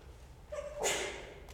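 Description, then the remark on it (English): A single sneeze: a short rising intake of breath followed by a sharp, hissy burst that trails off quickly, fairly soft, with no talking. “Bless you.”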